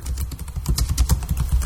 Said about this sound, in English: What are you doing? Typing a sentence? Stop it. Please.